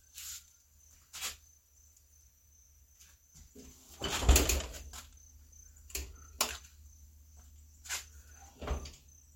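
An oven door swings open with a creak and a heavy clunk partway through as someone checks on a chicken cooking inside, surrounded by scattered lighter knocks and clatters, with no one talking.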